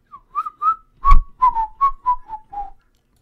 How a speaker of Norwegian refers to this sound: Orker ikke å plystre hele den der... Den ganske lang, den der plystre-greia vår, egentlig.